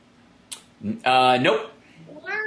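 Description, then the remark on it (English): A female cat meows, one long, loud, drawn-out call followed by a softer, rising meow, with a faint click at the start. “Cat wants to tell us.”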